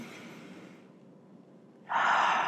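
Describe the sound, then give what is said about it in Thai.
A slow, deep breath drawn in with a soft airy hiss during a deep-breathing exercise, a brief quiet pause, then a louder, forceful exhale rushing out. “ตอนนี้เราลองหายใจลึกๆนะคะ”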